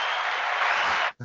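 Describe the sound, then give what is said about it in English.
A dense burst of applause from a sound effect track, steady and loud for about a second, then cutting off abruptly, followed by a brief low thump. “I come with my own applause track.”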